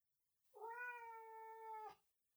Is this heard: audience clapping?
no